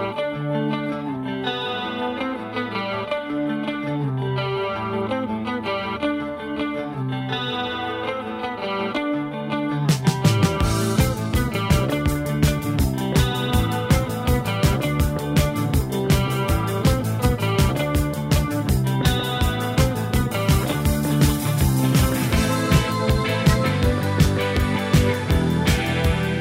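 A pop rock song plays at full volume, opening with a sparse guitar-and-keyboard riff before drums and bass crash in around ten seconds for a driving, steady beat.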